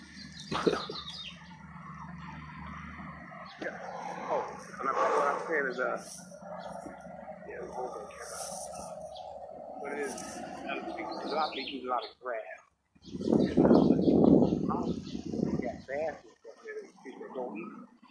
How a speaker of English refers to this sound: Got some little birds out here in the yard today. Pretty guys. Little red-haired finches. Something like that. They look nice.